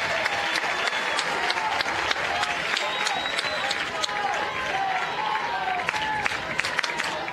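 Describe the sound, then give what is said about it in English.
A large stadium crowd at a baseball game roars and applauds steadily as a hit ball lands fair, with dense clapping and cheering voices rising over the loud, continuous din for several seconds. “That was quite the roar when that one landed fair.”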